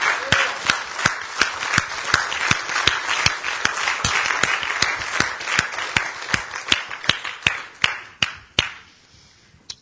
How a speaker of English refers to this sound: Let us all stand together. And let's give God a hand clap of praise. Amen.